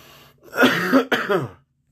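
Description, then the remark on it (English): A loud throat clearing breaks into two rough, harsh bursts of coughing with a brief catch between them, then fades to quiet. No one speaks. “So, yeah, excuse that cough.”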